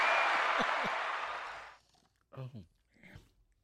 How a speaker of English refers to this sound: I want to applaud you for finally seeing that movie. That's all. Oh, okay. I felt like you deserved that applause.